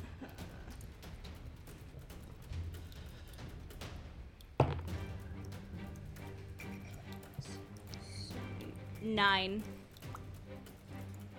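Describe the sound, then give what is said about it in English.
Dice, including an eight-sided die rolled for damage, clatter and roll across a tabletop in a run of quick, sharp clicks and taps, with murmuring voices underneath and a brief vocal sound near the end. “Roll some damage. And then I need my D8.”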